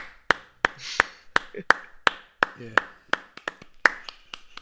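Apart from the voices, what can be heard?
applause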